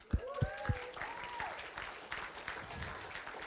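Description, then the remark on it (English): An audience breaks into applause, a dense, steady patter of many hands clapping that holds at a moderate level, with a few heavier thumps at the start. “That's a clap moment.”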